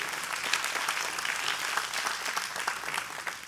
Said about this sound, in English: Come on, clap your hands. It's all right.